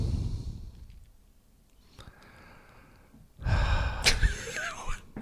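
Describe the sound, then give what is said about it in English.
Loud breathing right against a microphone: a rough exhale at the start, a quieter pause, then a harsh, gasping burst of heavy breaths that distort slightly. “I like the breathing into the microphone.”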